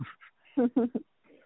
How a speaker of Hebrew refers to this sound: יש פה הכלבים של השכנים, שהם באים אחר הצהריים, והם לא באים להגיד שלום, אבל הם דובחים עליי מרחוק.